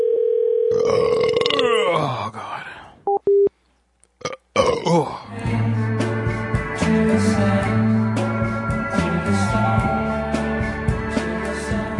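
A brief steady phone-like tone and a few clicks give way to a long, loud, rumbling burp that carries on for several seconds, with no talking.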